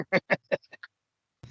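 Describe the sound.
A voice imitates a car quacking very loudly each time it shifts gears, a quick run of nasal quacks, three strong ones then a few smaller, clear, followed by silence and a brief noisy rustle.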